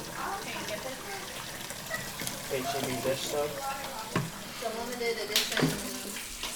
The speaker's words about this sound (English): Okay. I am washing my hands. Kind of soapy. Dish soap.